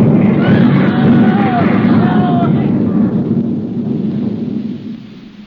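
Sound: artillery shell explosion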